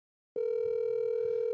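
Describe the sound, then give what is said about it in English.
A steady, unbroken phone tone sounds after a brief silence, holding one loud pitch with faint harmonics, the flat signal left on the line by a second failed phone call. “Okay, this is a second failed phone call.”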